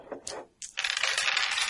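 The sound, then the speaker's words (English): Two six-sided dice are rolled during a tabletop game session: a few sharp clicks and a brief pause, then a steady, bright clattering rattle that continues for about a second with no voices. “Everyone make 2 D6 rolls, and again, don't snake eyes.”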